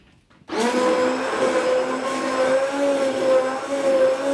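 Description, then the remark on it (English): An immersion blender switches on abruptly and runs with a steady, loud high-pitched whir, its motor tone wavering slightly as it churns through soup. No one speaks. “So, all right, and in comes the immersion blender.”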